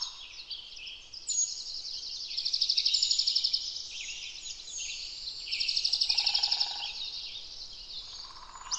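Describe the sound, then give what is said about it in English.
Layered birdsong rings all around through a sequoia forest, bright trills and chirps overlapping from several directions, with a soft reverberant wash of echoes and no voices. “Listen to the echoes of birdsong all around us.”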